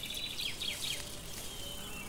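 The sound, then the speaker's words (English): Quick chattering chirps of a flock of finches on a branch flutter high and bright over a steady, faint hiss of outdoor ambience in a sunny morning meadow, with beetles scurrying up and down the long grasses and insects buzzing softly in the background. “A flock of finches chatter on a branch and beetles scurry up and down the long grasses.”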